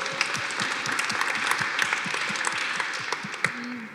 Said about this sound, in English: Hear, hear. I feel like that needs applause. Yeah, I think so.